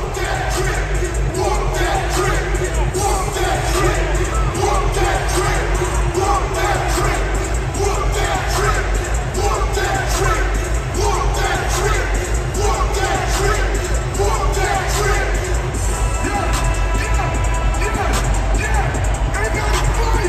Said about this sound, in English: And so as the game was winding down, the fans in Memphis do this. They get their towels up and they sing this to opponents.